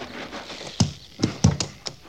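A horse ridden by a captain clops its hooves against hard ground in a handful of uneven thuds, each a sharp knock with a low body, separated by short quiet gaps.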